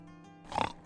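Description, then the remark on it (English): A single short grunt from a pink pig, fairly loud, a breathy snorting burst lasting under half a second over a low, steady background hum. “Like yeah, it's a, like this is a traditional like pink pig.”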